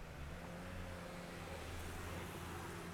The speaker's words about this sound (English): Another moving truck.